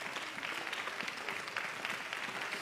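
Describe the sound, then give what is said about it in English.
A church audience gives the Lord a hand clap of praise, clapping together in sustained, dense applause, many hands slapping in a steady crackling wash that stays loud and even throughout, with no voices standing out. “I wonder if you'd just help me tonight, give the Lord a great big hand clap of praise.”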